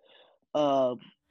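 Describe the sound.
A single loud, close breath right into the microphone, a short voiced gasp lasting about half a second, preceded and followed by fainter breathy exhales.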